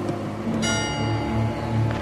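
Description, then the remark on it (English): A clock strikes twelve with a resonant, bell-like chime, one ringing tone sustaining with bright overtones over a steady low hum. No one speaks. “Then they hear the clock strike 12.”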